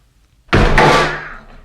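A single heavy thud as a heavyset man throws his body against the wooden door of an outhouse toilet, followed by a brief rattling shudder that fades out within a second; no voices.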